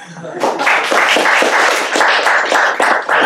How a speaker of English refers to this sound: And now, thank you, ladies and gentlemen. You may applaud now.